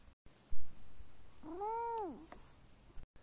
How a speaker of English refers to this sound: By the way, that was a sound made from my cat, and I just wanted to include that since number 10 is hang out with your pet.